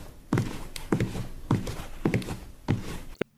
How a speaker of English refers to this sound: Footsteps are heard as Chief Shepherd walks into Tankard's. He steps up to the bar.